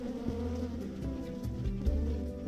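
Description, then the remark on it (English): A steady, droning buzz of many bees swarming at a farm, layered hums rising and falling slightly over a couple of seconds with no voices. “So the farm had a limited number of bee suits, and the first thing we had to do was decide who was going to wear the suit and walk into the den of bees.”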